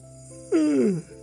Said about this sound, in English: No, not yawning. I know what I'm about to say, and that made me yawn. I'm boring myself.